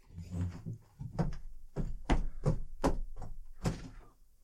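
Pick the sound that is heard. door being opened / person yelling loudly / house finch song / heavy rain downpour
door being opened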